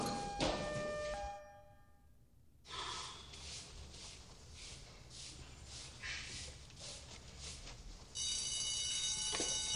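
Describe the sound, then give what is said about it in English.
A fire alarm rings loudly with a sustained metallic tone at the start, cuts out briefly amid rustling noise, then blares again toward the end. “No. The alarm. We're just training.”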